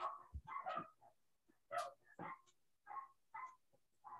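A dog barks in a quick series of sharp barks, around seven of them in bursts with short pauses between, fairly loud and with no talking over them.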